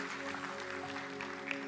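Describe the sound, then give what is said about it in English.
A church audience clapping their hands to the Lord in a dense, continuous patter that stays at an even level, with a sustained instrumental tone held steady underneath. “Let's clap our hands to the Lord today.”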